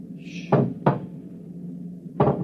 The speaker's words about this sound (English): Shh. It's at the door. Get ready. And it's opening the lock.